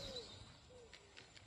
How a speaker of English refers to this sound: It's some trees, some birds.